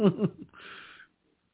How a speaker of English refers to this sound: excuse me, oh shit, now I'm going to start yawning. This is getting ridiculous.